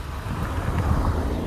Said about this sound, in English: It's a car coming by, sorry.